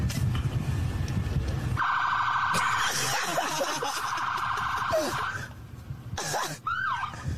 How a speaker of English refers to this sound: You're sitting in your car, you're nice and warm, and you kind of doze off, and all of a sudden you hear like sirens right next to your head.